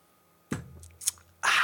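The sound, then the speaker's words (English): Someone takes a sip of a drink: a soft knock and a few small wet clicks, then a loud, steady slurping hiss to the end, with no talking. “Hey, I'm going to have a drink. One sec.”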